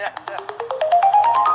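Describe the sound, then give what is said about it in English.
Quick, evenly spaced electronic beeps pulse for a moment, then give way to a steady tone that climbs upward in small steps, like a rising ringtone, fairly loud with no talking. “What's that beeping noise in the middle though?”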